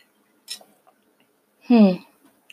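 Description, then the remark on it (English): A quick, soft slurp of someone sipping hot coffee, followed after a pause by a short, satisfied voiced sigh. “Let it marinate as I sip on my coffee.”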